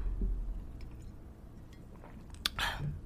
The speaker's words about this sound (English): Let me sip my Life Being High the podcast mug.